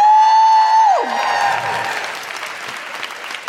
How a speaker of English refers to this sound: And when we get there, we're just going to have a big cheer for the sisterhood / siblinghood.